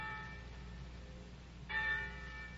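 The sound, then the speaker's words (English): Church bells ring out with long, shimmering tones that hang in the air, then a fresh clang swells in near the end; soft, with no voices. “But every day you read the papers and heard the gossip of the village, and every day the winds carried you the clangoring of the church bells, telling the news of some great victory.”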